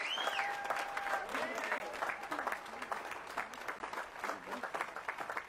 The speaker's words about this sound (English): Can we give a huge, huge round of applause